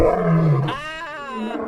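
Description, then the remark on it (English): A lion at a zoo lets out a single loud roar, starting as a deep rumbling growl and rising into a drawn-out, raspy bellow that fades slightly at the end. “Hey, man, you just kicked that kid to the lion's den.”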